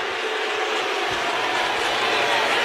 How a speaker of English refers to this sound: You hear the crowd responding. You know, sometimes there are a bunch who are for something, and then there's a whole other bunch that's against it.